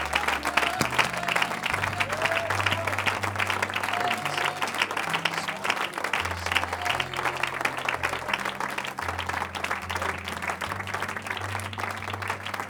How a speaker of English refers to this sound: If there's any stubborn folks in the house, clap your hands unto the Lord and lift up your voice.